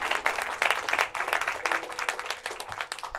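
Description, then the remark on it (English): A church audience breaks into steady applause after a baptism, dense overlapping claps at moderate volume, sustained throughout with no speech. “Let's give her clapping.”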